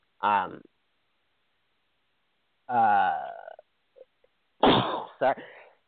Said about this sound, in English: oh God, I've never sneezed on air before. I've said shit a lot of times, but I've never sneezed. Hold on.